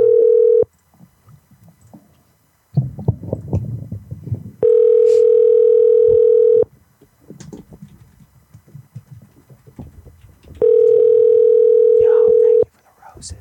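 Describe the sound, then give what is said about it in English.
A telephone ringback tone, heard while a call to the Residence Inn by Marriott in Portland is transferred to the operator, sounds in three long, steady bursts of about two seconds each, loud and even in pitch, separated by stretches of low rumbling background noise. “Please stay on the line while your call is transferred to the operator.”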